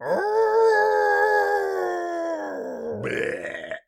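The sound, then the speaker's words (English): A giant robotic creature lets out a loud, sustained howl for about three seconds, its deep tone rising slightly before breaking into a harsh, rasping burst at the end. “The Ava howls as we end the episode.”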